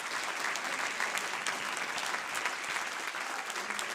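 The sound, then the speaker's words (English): A crowd claps hands unto the Lord steadily, a dense, continuous patter of many overlapping claps at an even loudness for the whole stretch, with no talking over it. “Oh, clap your hands unto the Lord, all ye people.”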